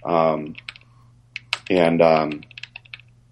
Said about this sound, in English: No typing, PJ.